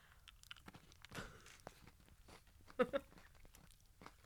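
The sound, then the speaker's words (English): Crunchy chewing of Trader Joe's mini dark chocolate mint stars, small hard candies, with irregular crisp crackles and two louder bites near the end, alone without talking. “I really don't like ASMR, so if you're somebody who's uncomfortable by chewing, I'm so sorry.”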